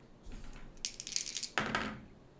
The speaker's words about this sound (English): Go ahead and roll percentile dice.